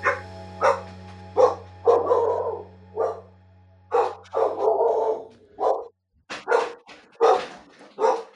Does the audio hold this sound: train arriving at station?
no